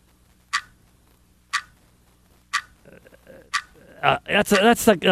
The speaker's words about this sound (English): I know what it is. I figured it out. It's a clock. It's the tick-tock of a clock.